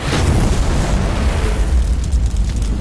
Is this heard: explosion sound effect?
yes